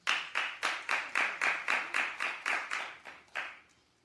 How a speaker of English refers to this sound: Now, my question to you, is it wrong to let a girl even meet a two-year-old? Clap if you think it's wrong.